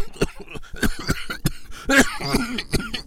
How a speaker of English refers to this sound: Ahaziah erupted with a fit of coughs.